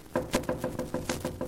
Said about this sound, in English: I'm going to knock.